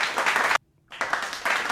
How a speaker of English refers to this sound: Yeah. I'm going to just do the clapping after.